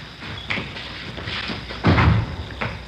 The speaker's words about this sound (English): Here, I'll get the door.